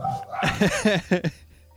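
A few quick dog barks in a short burst, four or five yelps in close succession at moderate volume, with no talking, then fading to quiet.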